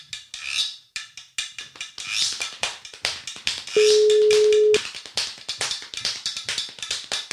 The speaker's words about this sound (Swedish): nu ringer vi till Lina här då